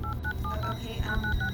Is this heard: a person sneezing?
no